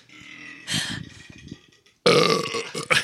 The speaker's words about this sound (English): Dude, the Balashi out of the can, making us burp.